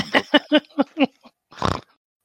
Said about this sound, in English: I got a snort already.